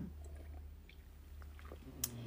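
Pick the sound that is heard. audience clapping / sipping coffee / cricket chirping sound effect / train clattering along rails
sipping coffee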